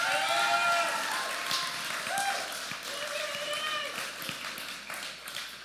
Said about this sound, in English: But can y'all give him the biggest round of applause?